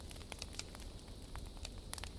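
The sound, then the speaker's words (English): A wood fire in a hearth crackles steadily, with irregular sharp pops and snaps scattered over a soft low rumble, fairly quiet, with no voices. “The crackling of the wood is a symphony of comfort, a sound that speaks of home and hearth.”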